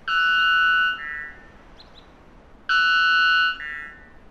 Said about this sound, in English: We've had to attenuate the sound of the bird because of the dynamic range limitations of radio, but try to imagine just how much louder this would have been